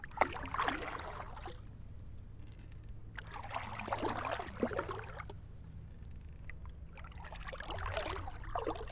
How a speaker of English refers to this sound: This rowing is really calming. More so because of the sound of the water just brushing by the boat and the oars cutting through the water like a hot knife in butter.